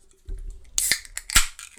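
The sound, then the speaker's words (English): A can of LaCroix sparkling water is cracked open: a soft low thump, then a sharp metallic pop with a brief fizzy hiss, followed by a couple of crisp clicks. No one speaks. “You listeners, picture it to be a beer. It's not. It's a LaCroix.”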